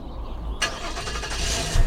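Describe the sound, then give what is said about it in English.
A Hemi V8 car engine cranks and catches after a brief low rumble, then roars steadily and grows louder toward the end, with no talking. “Oh, this is a nice ride you got. It's a Hemi.”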